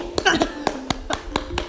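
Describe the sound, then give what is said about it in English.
A single person claps about seven times in a steady, fairly quick rhythm, each clap sharp, with a brief voiced sound or laugh near the start. “Yeah, if you don't clap, I'll clap.”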